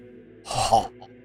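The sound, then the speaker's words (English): A single heavy, breathy exhale, like someone imitating exhausted panting, with a slight voiced grunt in it and a quiet background around it. “Hence the panting.”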